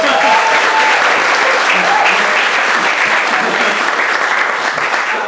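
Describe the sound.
An audience claps steadily as a storyteller is invited to the stage, a dense, continuous wash of many hands at an even loudness for several seconds, with a few faint voices mixed in before it starts to taper.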